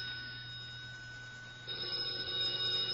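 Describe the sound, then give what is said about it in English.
A telephone lying under the evening paper rings with a steady, shrill, high-pitched tone that holds without a break, getting louder and brighter about halfway through. No one speaks. “It's the telephone. I know, I hear it, but where is it?”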